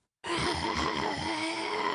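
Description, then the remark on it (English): A person imitates a growl: one sustained, rough, guttural rasp starting abruptly and holding steady at strong volume for almost two seconds, with no words spoken. “This is my growl.”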